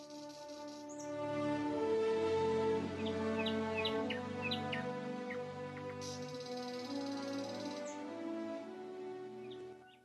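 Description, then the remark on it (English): A bird sings in a tree: a series of short, high chirps and whistles, clustered in the first half, over a steady, humming tonal backdrop that continues throughout. “Chirpy was singing in the tree when he saw a beautiful butterfly fluttering by”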